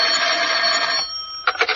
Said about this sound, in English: When I walked into the office, the phone was ringing.